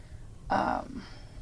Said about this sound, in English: And again with the throat and the breathing.